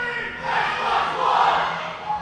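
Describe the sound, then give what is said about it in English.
A group of staff at a Microsoft store cheer and chant "Xbox One" together in a loud, sustained burst of many overlapping voices that swells and holds for about two seconds. “The staff here, the staff at the Microsoft store, they were like cheering and chanting like Xbox One.”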